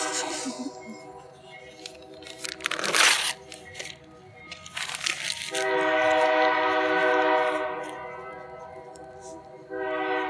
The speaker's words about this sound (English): Hey, y'all, let's wait until the train passes.